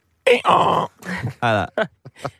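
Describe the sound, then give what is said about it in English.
A person imitates a donkey's bray, with a rough, strained hee-haw rising and falling in harsh voiced bursts, then trailing off into a few short, choppy vocal fragments. “I've got a lot of time for donkeys. Yeah, they make a lot of funny noises.”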